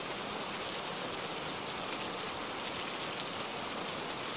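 Steady rain pours down in a dense, even hiss of countless drops pattering on a surface, continuous throughout with no voices or other sounds.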